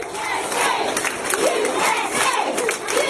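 A crowd of children chanting "USA" in unison, a steady rhythmic chant with repeated rising syllables, loud and continuous with high-pitched voices throughout.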